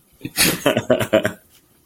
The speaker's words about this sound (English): There was a snort. Nailed it. And a cough. Yeah, there was a cough and a snort.